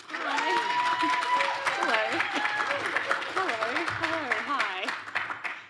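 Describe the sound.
An audience breaks into steady, dense applause lasting several seconds, with voices whooping and calling out over the clapping before it thins slightly toward the end.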